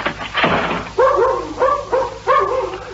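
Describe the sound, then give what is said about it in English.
A dog in a 14th-floor apartment barks three times in quick succession, sharp, preceded by a brief scuffing thump, over a low steady hum. “Why don't you try calling the dog?”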